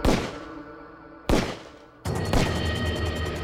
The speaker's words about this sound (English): Then, without making a noise, he raised the gun and fired 3 bullets into his father's back.